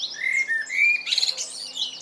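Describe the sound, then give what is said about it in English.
A blackbird sings a run of clear, fluting whistles that slide and warble, broken by brief higher twittering phrases, continuous with no one speaking. “From the nightingale to the wren to the humble blackbird,”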